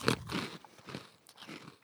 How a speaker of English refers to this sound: I like that crunch. Hey, now. That's good.